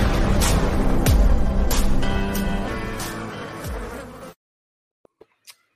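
A loud bee buzzing drones steadily for about four seconds with wavering pitch, then cuts off abruptly, followed by a few faint, brief clicks in near silence.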